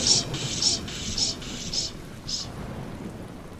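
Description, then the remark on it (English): Pouring rain with a low, rolling rumble of thunder beneath it, while a bright high-pitched pulse repeats about twice a second, fading after a few beats. “And so onwards they rode through the pouring rain until they arrived at the hulking shadow of the estate.”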